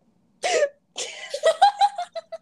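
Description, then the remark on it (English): A voice imitates a mother's loud, open-mouthed hiccup made without shutting the mouth, a sharp gulping burst, followed by a quick string of short, high-pitched vocal bursts that trail off like laughter. “My mom doesn't shut her mouth, so she goes...”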